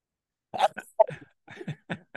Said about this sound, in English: Excuse me. Okay. I think that's the first time I've ever sneezed during a show.